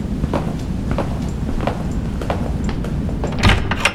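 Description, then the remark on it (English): The doors of a dilapidated freight elevator slide open onto a deserted office hallway over a steady low mechanical rumble, with light rhythmic clicks and a brief louder clatter near the end; no one speaks. “The elevator doors open on a deserted office hallway.”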